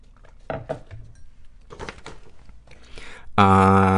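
food or drink, sipping tea

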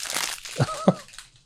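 household object, paper rustling

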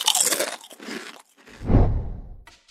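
food or drink, crunching potato chips

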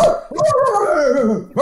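animal, dog barking

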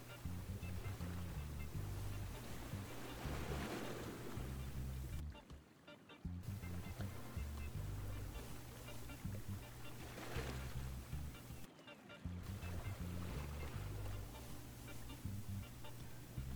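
nature, ocean waves

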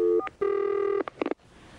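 signal or alarm, telephone number being dialed

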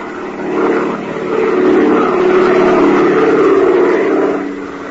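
vehicle, airplane engine in flight

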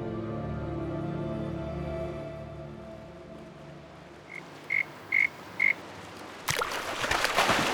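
splashing water

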